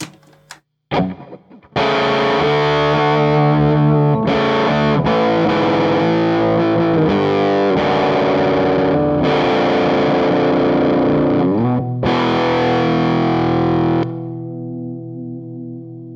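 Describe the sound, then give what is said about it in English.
An electric guitar played through a Pettyjohn Chime overdrive pedal rings out loud, saturated chords, a few short stabs first, then long sustained strums with brief breaks, fading to a softer ringing tail. “Pettyjohn Chime MK II vs Chime Comparison - Upgrades Galore!”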